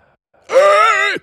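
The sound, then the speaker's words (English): A single loud, drawn-out groaning exhale from a voice imitating the heavy, menacing breathing of Michael Myers, the killer from the Halloween horror films. It lasts under a second and stands alone, with no talking. “Yeah, I'm doing like the Michael Myers breathing.”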